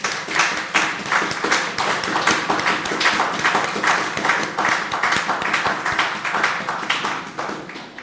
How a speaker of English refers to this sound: Give the Lord a clap of offering.